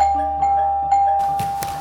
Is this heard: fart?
no